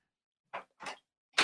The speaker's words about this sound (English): Getting knocked on the door here by my son.